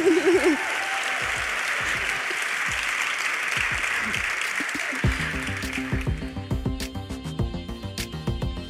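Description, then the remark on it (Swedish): Steady, dense applause from an audience fills the first several seconds, a crowd clapping at an even level, then music with a plucked rhythmic beat takes over as the clapping fades. “Och en stor applåd, eller hur?”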